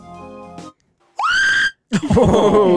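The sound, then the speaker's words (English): A woman screams in terror: a loud, shrill cry that rises sharply, then a second harsher, ragged shriek after a brief silence, preceded by a short sustained tone. “Go right into it, and it's a fucking lady screaming for her life.”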